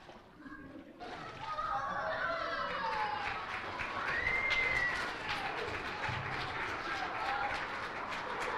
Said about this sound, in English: Amen. I love it. Thank you for clapping. I didn't even give you that instruction, but thank you for doing that because it certainly is an awesome celebration this morning.